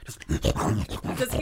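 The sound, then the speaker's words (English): Someone imitates the growl of a huge, horse-sized mastiff barreling around a corner: a deep, rough, rumbling snarl surging in a few throaty pulses over about a second and a half, with no other sounds. “And this huge dog comes barreling around the corner like this horse-sized mastiff.”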